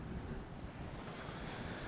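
Ocean waves crash on the shore as a steady, loud rush of surf, with a breezy hiss mixed in and no distinct breaks or pauses. No one speaks.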